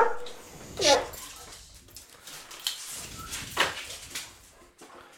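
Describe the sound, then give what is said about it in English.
A dog barks twice, a few seconds apart, each bark short and sharp against a low, noisy background. “The dog's got to say hi every time.”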